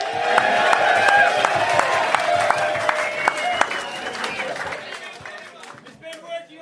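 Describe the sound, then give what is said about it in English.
A crowd claps and cheers steadily, with dense overlapping hand claps and raised, whooping voices that stay loud for most of the stretch, then thin out toward the end. “You want some applause from the crowd.”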